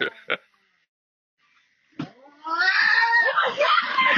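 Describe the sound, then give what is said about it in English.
A bobcat lets out a loud, drawn-out snarling yowl, wavering and raspy for nearly two seconds, after a couple of brief knocks and a short silence. “This bobcat's probably out there because it's fucking starving or some shit.”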